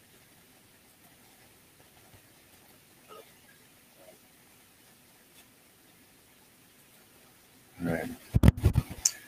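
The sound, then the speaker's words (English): A faint steady hiss of microphone static runs throughout, then bursts into loud, crackling, popping noise near the end. A brief spoken word is heard. “Mike, it's super static.”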